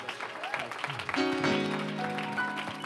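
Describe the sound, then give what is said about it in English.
A church audience claps steadily in welcome as the student pastor comes up to preach, a dense wash of many hands, while sustained organ-like chords swell in underneath about halfway through. “Can we give the Lord a hand clap of praise?”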